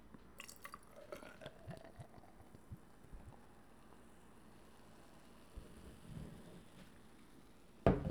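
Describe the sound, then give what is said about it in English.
A light beer being opened and poured into a glass, quiet, with soft trickling and dripping plus a few light clicks early on, then a sudden louder thump right at the end. No talking. “I don't know if you guys heard that, but there that goes, and I'll pour it right here on air.”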